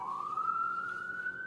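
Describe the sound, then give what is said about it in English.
An ambulance siren wails outside a house, one long tone slowly climbing in pitch, steady with a faint background hum and no one talking. “There's an ambulance outside my house.”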